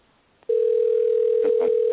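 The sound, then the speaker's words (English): After half a second of near-silence, a steady, mid-pitched ringing tone of an outgoing telephone call to the firm Rough Rolling switches on and holds unbroken at even loudness to the end, with faint murmurs underneath. “You're going to call them. I'm going to ring them.”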